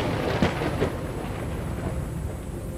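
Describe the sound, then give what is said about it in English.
A deep, rumbling roar of thunder after lightning shoots up into the sky, with a couple of sharp crackling bursts near the start, then a steady heavy rumble that continues to the end. No one speaks. “Your hands burn a bit, so you have to let go, and the pendant just sort of floats there as this lightning shoots up into the sky, and then there's a loud crackling thunder.”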